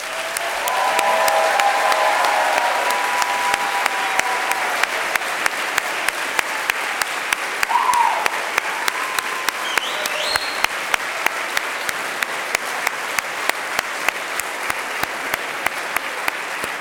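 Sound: crowd applauding and cheering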